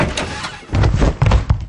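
A door is opened: a muffled rumble gives way to a few loud, heavy clunks and rattles in quick succession, with no one speaking.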